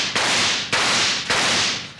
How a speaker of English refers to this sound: I was going to knock some holes in the bucket to let the water run through it. I'll just shoot some holes in it.